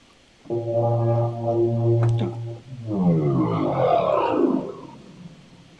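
A deep downer sound effect: a low, steady droning tone gives way to a rumbling, roaring sweep that slides downward in pitch before fading out. No voices.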